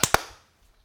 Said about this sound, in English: Sync clap in 3, 2, 1. Another sync clap in 3, 2, 1.